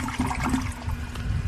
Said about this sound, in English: Please don't flush in the toilet.